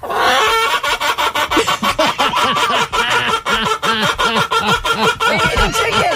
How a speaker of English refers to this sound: Because every time I tell a dad joke, I want to be able to use the chicken sound.